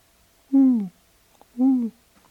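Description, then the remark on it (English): Two clear owl hoots about a second apart, each a short tonal call sliding slightly downward in pitch, heard alone against a quiet background at night. “And then suddenly there would be, I don't know, night owl.”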